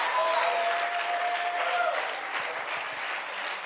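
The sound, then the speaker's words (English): An audience at a church service with many children present claps hands in a dense, steady burst of applause that holds at an even loudness throughout, with a faint sustained tone lingering underneath for the first half. “They need to see you clapping your hands.”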